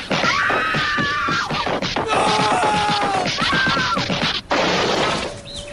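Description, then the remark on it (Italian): Loud crunching and cracking as caracal kittens together chew through their first bones, from prey caught by an adult caracal, a dense run of snapping crunches punctuated by squeaky growls and whines. “Scoprono insieme il piacere delle prime ossa frantumate.”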